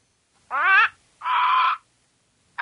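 A bird squawk sound effect: harsh, crow-like squawks in quick succession, two full raspy calls about half a second each followed by the start of a third, loud, with no one talking.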